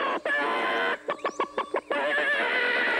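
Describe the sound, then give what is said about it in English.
A person imitates a chicken, with a burst of loud nasal squawking, a rapid staccato run of about six clucks, then more sustained squawking, all loud with no other talk. “You just gotta stop the clucking, guy.”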